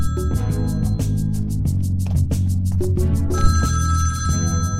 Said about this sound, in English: Then the phone rings. All right, I'm coming.